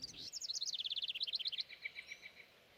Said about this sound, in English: I don't know about you, Sprouts, but when I wake up in the morning, all I hear is birds. They start singing at the crack of dawn as soon as the sun comes up. I'm not sure what all they're saying, but they're saying something.